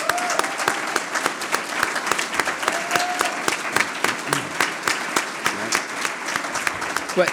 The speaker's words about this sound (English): Let's give him a round of applause, shall we?